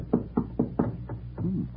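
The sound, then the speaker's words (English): A door slides open with a short, muffled scraping rumble, preceded by four or five soft, evenly spaced knocking thumps. No voices. “The door slid open.”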